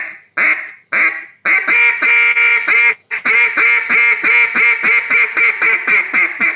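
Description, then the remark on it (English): A duck call blown loud with little bits of air: a few short quacks, then a long drawn-out quacking run that pulses rapidly and steadily, stringing the note out with barely a pause. “If anything, I'm probably pushing a little more air into a quack and stringing it out a little more because I'm trying to make it that quack last.”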